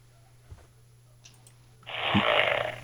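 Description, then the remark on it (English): A single wet, raspy fart sound effect bursts out for about a second, loud and hissy with a low splutter, following a quiet stretch broken only by a soft thump. “You in a fart sound noise tonight,”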